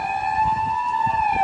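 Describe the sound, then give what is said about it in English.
An ambulance siren wails steadily and loudly as the ambulance goes by, a sustained high tone with harmonics gliding slightly, over low rumbling traffic noise, with no one talking. “Speaking of good health, that's an ambulance that's going by.”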